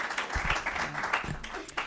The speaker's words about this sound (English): I wish we could do more, but we unfortunately are out of time, so please join me in giving our panel a round of applause.